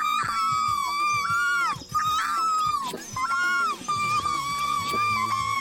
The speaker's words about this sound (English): From the things that he salvaged, he shook over the fire, and the baby spiders would fall off, and we hear them scream in terror.